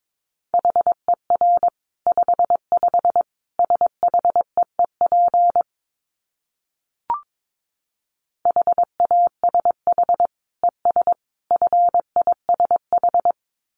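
Morse code beeps sent at 22 words per minute, a steady mid-pitched tone keyed in quick dots and dashes, broken by a pause with a single click before the sending resumes. No voices.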